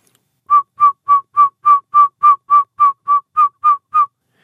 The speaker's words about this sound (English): They may hear a quicker call, and this is the northern saw-whet owl.